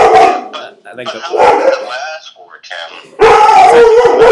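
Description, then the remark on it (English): A dog howls and barks in a series of strained, wavering vocalizations, ending in a loud burst of sustained howling. “Sorry, my dog is.”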